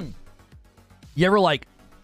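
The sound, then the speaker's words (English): A short, loud burst of throat clearing, raspy with a wavering voiced tone, lasting about half a second, surrounded by quiet low thumps. “I coughed anyway. I tried not to.”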